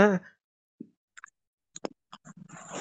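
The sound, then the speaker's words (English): A sharp, high-pitched voiced gasp bursts out at the start, exaggerated and cartoonish, followed by quiet gaps, scattered soft clicks and brief breathy vocal noises. “When you do that anime gasp, I have no idea what the fuck's going on.”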